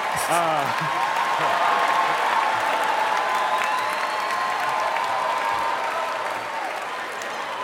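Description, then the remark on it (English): A crowd at a comedy roast applauds steadily, dense clapping at a fairly loud, even level throughout, with a brief voice and a bit of cheering near the start before the applause slowly eases off. “Okay, everybody's clapping.”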